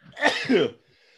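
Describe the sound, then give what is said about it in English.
A single forceful sneeze: a short breathy build-up, then a noisy burst that fades into quiet. No one is talking. “Bless you.”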